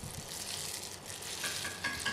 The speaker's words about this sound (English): So there's the dough going into the frying oil. It is very deep in a wok/saucepan, kind of. You see it rising, huh? So it gets bigger and bigger.